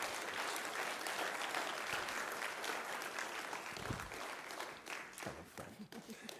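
An audience applauds a person invited up to share how Jesus changed their life, steady dense clapping filling the room at a fairly loud, even level, with a few voices murmuring underneath as it starts to fade toward the end.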